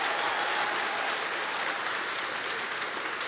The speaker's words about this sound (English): Don't wait until somebody claps for you. Clap for yourself, okay? Okay, if I say clap for me now, you clap louder than that. Can you please clap for yourself and celebrate yourself?